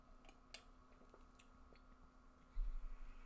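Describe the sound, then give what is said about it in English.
Quiet sounds of someone taking two big sips of water and swallowing: soft wet mouth clicks and gulps, ending with a deeper, fuller swallow. No one speaks. “I took 2 sips. 2 huge sips.”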